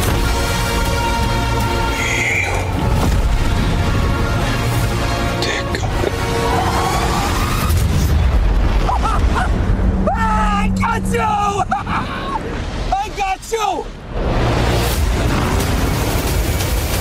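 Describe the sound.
A big explosion in the trailer for the Batman film booms, as Penguin tries to get away from Batman, through a dense, loud mix of rumbling low end, swelling music and muffled voices, with the roar sustained for several seconds before sharper effects cut in.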